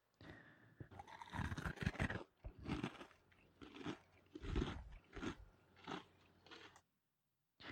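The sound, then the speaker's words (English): Loud crunching as a boy chews a spoonful of crisp cereal fed to him, with repeated rhythmic bites over several seconds before stopping abruptly. “Oddly, he was so taken with the delicious flavor, the crunching sound didn't bother him at all.”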